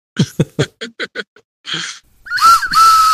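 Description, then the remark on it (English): A quick run of about six laughing bursts and a breathy exhale give way to a person whistling, a wavering note that settles into a steady, sustained tone. “You do have the whistle now.”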